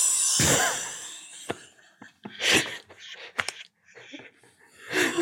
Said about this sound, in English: Come on. It's not even out yet. It's going to keep happening this entire episode. It's a 5-part burp. It hurts, doesn't it?